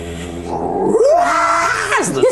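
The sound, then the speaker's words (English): A voice imitates a roaring, screaming war machine starting up after a coin is slid into a slot, with flame gouting out its back; a loud, continuous growl with wailing pitch swoops rising and falling over about two seconds. “the screams of the damned just kind of roar up, flame gouts out the back of the war machine.”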